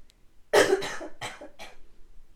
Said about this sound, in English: Hold on, I gotta cough.